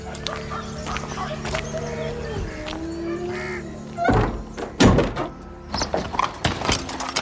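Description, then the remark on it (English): A door shuts with a heavy thud, followed moments later by a second solid knock, set against a steady ambient hum with faint clucking birds in the background. “Close the door behind me. Don't let anyone else in. Keep it locked.”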